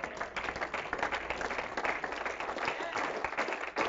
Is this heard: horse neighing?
no